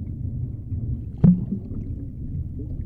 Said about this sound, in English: It was an accident. The car sank fast.